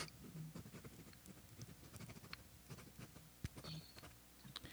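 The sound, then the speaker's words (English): An Air Canada pen scratches across paper as notes are made, a quiet, irregular run of short scraping strokes and light taps with no one talking. “Can you hear me writing?”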